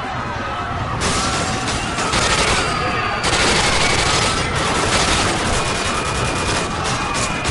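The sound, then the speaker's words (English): Dense, continuous automatic gunfire from a video game rattles on for several seconds, loud, with bursts overlapping and panicked screams mixed into the chaos. “It's lots of gunfire and screaming.”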